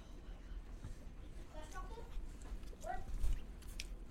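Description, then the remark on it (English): Quiet sips of a zero-sugar soda during a blind taste test: a few soft slurping draws and small mouth noises over a low background hum, with no clear talking. “Okay, I guess we're going to sip A. I am thirsty.”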